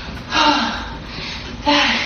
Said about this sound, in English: She literally took 10 steps. She's totally out of breath. Okay. She's like, okay, gotta turn around. Now I gotta go back. Just listen to her breathing as she plops back down into her wheelchair.